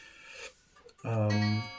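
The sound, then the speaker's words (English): A clock strikes once with a loud, low, ringing tone that holds briefly and then stops, preceded by a second of soft rasping, scraping noise. “And actually the striking of the clock and that point in the conversation brings me to my final question, which is also about emotion.”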